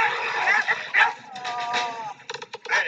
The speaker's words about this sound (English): Oh, those are the big dogs, yeah.